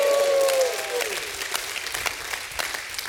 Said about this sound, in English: Give God a hand clap.